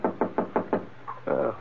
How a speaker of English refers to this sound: I must have dozed off, because it took me a while to realize that the sound I heard was a knock on my door.